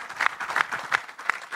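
A short burst of audience applause for a guest who owns a landscaping business. Many hands clap in a dense, crackling patter, with a few sharper claps standing out at a steady beat. No voices are heard.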